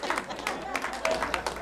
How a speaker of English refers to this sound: Clap for the Lord Jesus. Yes.